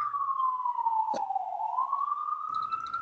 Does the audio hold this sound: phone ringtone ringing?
no